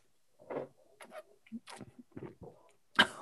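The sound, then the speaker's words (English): Several short sniffs of whiskey before tasting, spaced irregularly amid faint clicks and handling noises, ending with a sharper, breathier sniff. “So sniff. Sniff.”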